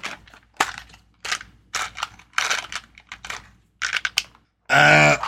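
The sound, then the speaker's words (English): Physical dice rattle and clatter across a hard surface in a series of sharp, irregular clicks and bumps. A brief loud, tonal burst cuts in at the very end. “All right, let me do a thing, because I have actual dice.”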